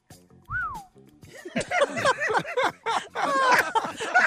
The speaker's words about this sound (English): That sound like shocking. You want that one again? I like that whistle. I like the whistle.